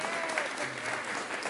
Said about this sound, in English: That's worth a clap.